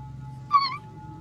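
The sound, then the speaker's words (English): A person imitates a mouse with one short, high-pitched squeak, a bright tonal chirp lasting about a third of a second over a steady low hum, with no talking. “Amazing squeak. I turned into a mouse.”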